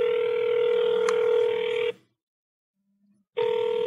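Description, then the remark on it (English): A telephone line rings on an outgoing call to a number picked from the white pages: a loud, steady ring tone for about two seconds, a pause of silence, then the next ring starts. No one speaks. “Bear with me, and let's see if one more person will pick up the phone.”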